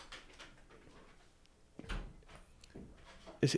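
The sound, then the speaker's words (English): A door swings shut with a low thud, followed by a few scattered clunks and a sharp, louder knock near the end, with faint room noise between. “Our man's just shut the door all the way.”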